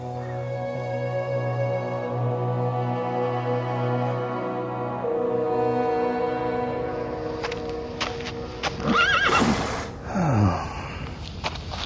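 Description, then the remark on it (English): A sustained low drone gives way to a few sharp hoof clops and then a horse's loud, wavering neigh, with snorting breaths, as the tense horses react to a person. “Even the horses tense around me.”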